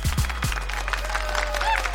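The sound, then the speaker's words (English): A crowd applauds outdoors for Juneteenth on a Saturday in New York City, a steady patter of many hands clapping at once, with a few heavy low thumps at the start and a whistle-like tone rising over the noise. “Can we get some claps for Juneteenth?”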